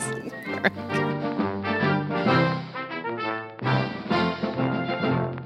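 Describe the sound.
A voice belts out a loud, strained, exuberant scream in imitation of Howard Dean's rally yell, its raw pitch wavering and surging over about five seconds with only brief dips.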